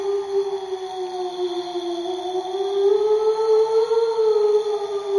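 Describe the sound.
A voice imitates a moaning ghost, holding one long, wavering, slightly rising and falling tone for about five seconds, steady and fairly loud with no other sounds.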